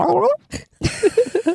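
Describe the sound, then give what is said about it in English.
A throat gurgle after swallowing a drink of water: a brief low, groan-like voiced rumble, a pause, then a quick run of four or five wet, bubbly clicks and glugs in uneven rhythm. “I always get that throat gurgle, you know, after you swallow a drink of water or something.”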